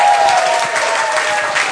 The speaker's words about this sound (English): I'd like a big round of applause, please, for all the actors.